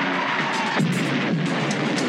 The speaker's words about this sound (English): It ends on an explosion. Yeah, that's a stock explosion. You know, it definitely sounds like a John Dykstra explosion, you know, like from Battlestar Galactica or any of his. It's way older than that.